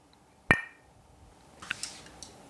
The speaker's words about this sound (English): Ceramic. I'm like, do I want to knock these together? I don't know.